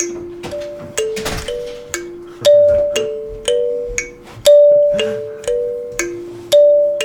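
A doorbell chime plays a bright, repeating ding-dong melody, with steady bell tones stepping up and down about twice a second for several seconds, loud with no talking.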